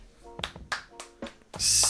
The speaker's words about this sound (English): I'm going to have trouble pronouncing this. I'm going to clap either way.